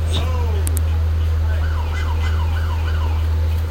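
A wailing ambulance siren rises and falls in a steady repeating sweep, heard from inside a mainstream Coda bus over a loud constant low engine rumble.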